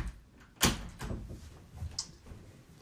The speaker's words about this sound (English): So I'm going to close the door real quick because the wife just got home.